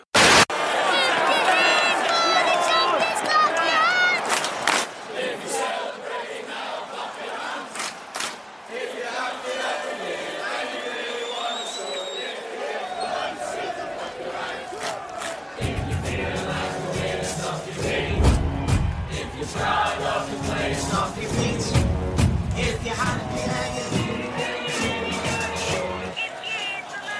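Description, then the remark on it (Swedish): A large football crowd of City fans sings a chant together, a version of the old British song If You're Happy and You Know It with words like 'if you love City, clap your hands', with rhythmic hand clapping and loud cheering. The roaring, echoing voices fill the whole stretch, swelling louder toward the end. “Och då har de gjort någon ny version på det här med typ om du älskar City, klappa dina händer och så vidare.”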